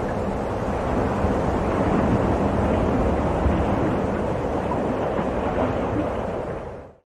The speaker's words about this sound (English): So I was listening to the new opening and I thought, oh my God, is it raining? Is there a storm outside? And then I remembered, oh, it's in my ear.